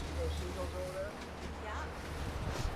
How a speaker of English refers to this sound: I'm on a boat on the Pacific Ocean off the northern coast of Haida Gwaii's Graham Island near the Masset Reserve, one of two main Haida communities.